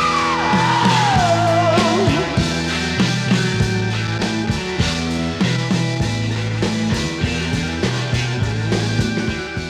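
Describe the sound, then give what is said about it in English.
A loud, dense rock song plays with guitar and a steady, repeating bass riff throughout. A high sliding note swoops down at the start, and the mix sounds full but flat. “The guitar seems to stand out more in stereo by comparison with the mono.”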